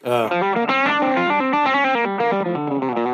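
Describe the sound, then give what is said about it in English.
A thick, heavily distorted guitar tone from the distortion section of a Route 66 unit plays a sustained melodic line with rich, buzzing harmonics, loud, with no talking over it. “And then the distortion section of this is just, if I can talk.”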